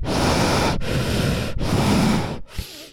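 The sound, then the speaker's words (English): Heavy breathing right up against a new microphone: three long, loud, rushing breaths in steady succession, each lasting most of a second, then a softer, shorter breath trailing off at the end. “Yeah, can you hear my breathing?”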